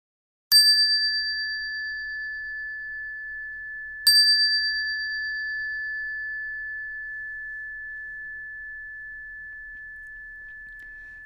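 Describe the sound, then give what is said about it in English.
A ritual bell is struck twice, about three and a half seconds apart, each strike ringing out clearly and sustaining a long, pure tone that slowly fades amid otherwise quiet surroundings, rung to begin a chant (Jusege). “We will begin at the sound of the bell.”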